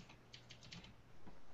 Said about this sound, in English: And I do apologize for the overly loud and overly largely bearing mechanical keyboard sound as I type away.